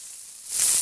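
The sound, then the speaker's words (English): A brief burst of sizzling, like food frying, with a bright crackly hiss that swells louder toward the end; no voices, fairly loud. “Oh, the something sizzling. That must mean it's like a crock pot here.”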